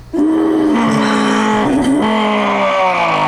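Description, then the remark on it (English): A nut punch sound effect: a loud punch impact hits, then rings out as a long, echoing drone whose low, buzzing tone slowly sags in pitch and wavers for about three seconds, with no voices. “Like this wretched sound of a nut punch that's echo and billing out.”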